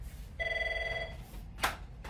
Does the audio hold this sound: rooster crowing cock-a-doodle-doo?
no